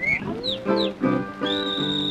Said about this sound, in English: My, how that little bird does whistle.